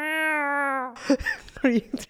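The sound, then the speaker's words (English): A person mimics a cat, holding a long steady vocal tone and then giving two or three short, bending meows, fairly loud. “I'll get you a cat backpack. Meow. Meow.”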